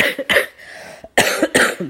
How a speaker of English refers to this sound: So excuse my cough. I sound worse than I feel, guys.